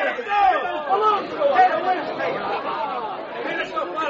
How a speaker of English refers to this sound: The crowd is growing wild.